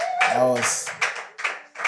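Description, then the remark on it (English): Several bursts of hand clapping from a group after a guest's answer in a question session, loose and uneven, with a brief vocal cheer or whoop rising over the claps near the start. “I think you can do better with the hand clap.”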